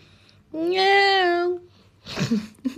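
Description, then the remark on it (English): A cat named Zeus lets out one long, drawn-out meow, steady and tonal, followed a moment later by a person speaking briefly. “I tell you what, I am absolutely in love with that cat.”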